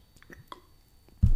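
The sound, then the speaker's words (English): Soft sips and small wet mouth sounds, followed by a sudden loud, low gulp or thump that ends the short clip. No one speaks. “So I need to have a quick little sip.”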